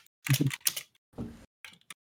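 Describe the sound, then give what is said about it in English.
Quick clusters of clacky keystrokes on a clicky computer keyboard, typed in four short bursts with brief pauses between them, no talking, while someone looks something up. “Clicky keyboard, man.”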